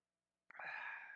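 After a moment of silence, a single sudden sneeze bursts out, trailing into a drawn-out breathy exhale.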